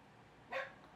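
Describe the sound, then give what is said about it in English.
A single short, sharp dog bark rings out over a quiet background hiss with no one talking. “Oh, there's a barking dog.”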